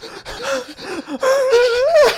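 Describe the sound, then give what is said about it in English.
A voice imitates panting: a quick run of short, breathy, voiced puffs, then a drawn-out whining vocal tone that wavers and rises before cutting off. “He would just hear me panting in the night.”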